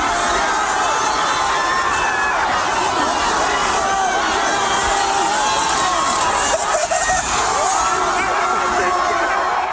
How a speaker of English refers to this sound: Listen to this one. This is some audio of a group of people flipping over a car.